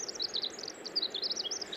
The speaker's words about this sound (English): they often sing when there's snow falling, when there's snow all over the ground. Listen to that elaborate, convoluted song, and doesn't it remind you of the song of our dipper? It's just a bit more urgent and energetic. Give it another listen here.